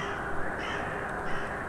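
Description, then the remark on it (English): A raven croaks harshly, a couple of rough calls rising briefly over a steady, noisy background, with no one speaking. “Then the bird sang, nevermore.”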